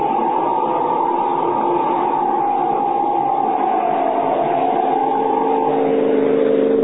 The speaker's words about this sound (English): Look at him skid around that curve. He's mad or drunk. Great Scott, what's he trying to do? Catch the car ahead of him? A fool. He'll either crash into it or go over that cliff.